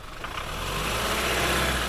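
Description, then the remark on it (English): A truck engine idles steadily while the truck is stopped to open a gate that keeps horses in place, a continuous low rumble with a faint mechanical hum and no voices, holding an even loudness throughout. “We have to keep stopping the truck to open up a series of gates that help keep the precious horses in place.”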